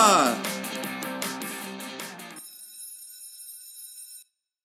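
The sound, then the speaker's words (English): A bell, the show's 'home moon bell', rings rapidly and loudly for about two seconds, its clanging strokes blending together, then stops, leaving a thin, high metallic hum that lingers before cutting off. “Fun, games, and a little shade abound, but I think I hear the home moon bell, and you know what that means.”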